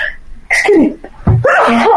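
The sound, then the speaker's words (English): A loud sneeze rings out, a sharp breathy burst followed by a second forceful explosive release, with no talking over it. “Bless you.”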